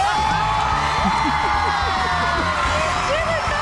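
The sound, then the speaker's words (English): A large audience at the final of The Voice 2021 cheers wildly as the winner is announced, with a steady roar of screams, whoops and shouting voices that stays loud and dense throughout. “And the crowd go wild”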